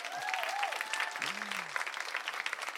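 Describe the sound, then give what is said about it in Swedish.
An audience claps steadily throughout, a dense wash of many hands with a few whistles rising above it, sustained and fairly loud for a few seconds. “Nej, men ge dem en stor applåd.”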